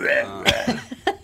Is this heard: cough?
yes